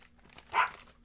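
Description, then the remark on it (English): A single sharp dog bark rings out once, short, standing alone against a quiet background with no voices. “Had to hit the dog with a rolled up piece of paper and still didn't work.”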